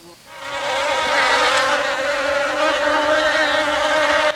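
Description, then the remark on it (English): A dense, steady drone of a large group of bees buzzing with rapid wingbeats, loud, with a slightly wavering hum that swells in and then holds for several seconds without any voices. “a rapid wing beat of large group of bees created vibration in the air so that Joseph's ear was buzzing”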